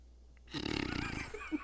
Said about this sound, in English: Oh, did you fart? Oh, I farted. You farted?